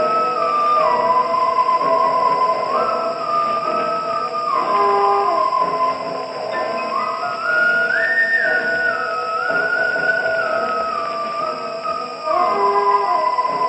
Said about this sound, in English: I wanted to mention one aspect of the film that really scared me when I first saw it way back on the Late Late Show. It was the eerie whistling that is in the main theme and appears throughout the movie.